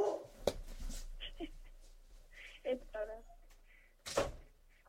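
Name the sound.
dogs barking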